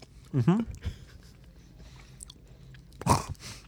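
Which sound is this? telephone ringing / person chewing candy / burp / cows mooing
person chewing candy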